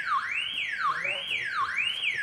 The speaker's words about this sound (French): L'alarme, pourquoi? Il y a un rat qui a passé dessus, c'est pour ça.